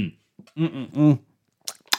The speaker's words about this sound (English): I've got a coffee with me to help me through the news and all the information. Let's have a little sip.